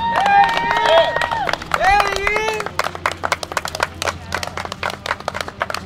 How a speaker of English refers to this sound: Yeah, that's him. He walks out. There's people clapping as he's walking out.